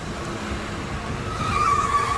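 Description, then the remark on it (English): An orange van rumbles loudly as it pulls up, its engine noise swelling before a sharp tire squeal cuts in as it skids to a stop. No one speaks. “He just pulled right in front of us in the orange van.”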